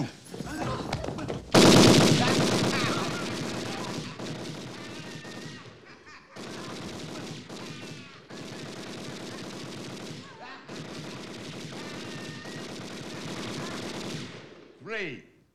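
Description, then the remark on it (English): In a film scene being played, a loud blast opens long stretches of rapid, crackling machine-gun fire that rattle on in several sustained bursts separated by brief pauses, ending with a short shout. “There's an insane guest with a gun!”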